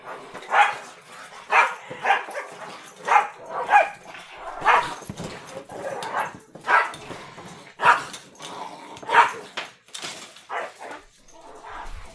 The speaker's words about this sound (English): Dog's going nuts over here.